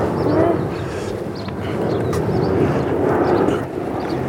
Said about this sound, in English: Blimey, that plane seemed low.